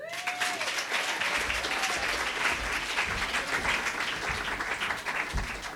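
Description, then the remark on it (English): Steady, dense applause from a sizable audience at the Triad Theater in New York City in 2008, welcoming comedian Tom Shillue, loud and continuous throughout, with a few faint cheers or whistles rising above the clapping near the start. “So please give a warm welcome to Tom Shillue.”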